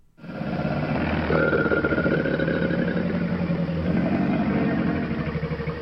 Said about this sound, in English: Yeah, that very low gurgle. That's a crocodile. It's the sound of a crocodile. I'd be scared if you were in a, sitting on the bank of a swamp there in Florida and you hear that sound.